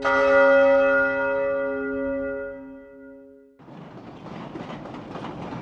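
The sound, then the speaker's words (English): A bright, ringing chime sounds and slowly fades over a few seconds, then gives way to a steady, broad rumble of a subway train and station noise. No one speaks. “This conversation takes place at the subway station.”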